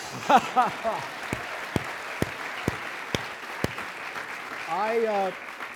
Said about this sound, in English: I'm clapping for Janel, I'm clapping for Brad, and I'm clapping for Aaron Sorkin, who wrote that scene, who created this series, and I wish he could be here today, because none of us would be here today were it not for Aaron.